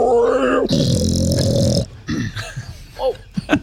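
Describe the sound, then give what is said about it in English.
A loud, harsh roar, likely a human voice imitating a furious, enraged hoofed beast going after a wolf pack's alpha, opens with a rising vocal strain, swells into a sustained rasping bellow for about a second, then trails into shorter snarling grunts. “Dergus is further enraged. And he's gonna go after the alpha. The new alpha. Because, you know, whatever alpha is in front of Dergus”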